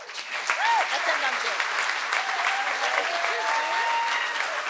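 An audience at an evening of storytelling claps loudly and steadily for several seconds to welcome the next storyteller, a dense, continuous wash of hand claps with a few brief whoops and cheers rising over it.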